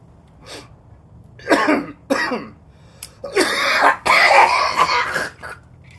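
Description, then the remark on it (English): A wet, phlegmy cough comes in a series of harsh bursts: two short hacks, then longer, rougher fits of coughing, loud and close, with no talking. “That was a wet cough.”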